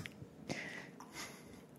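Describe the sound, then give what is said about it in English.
Someone takes a quiet sip of water: a couple of soft, wet slurps and mouth clicks, with no talking around them. “Let me get a sip of water here.”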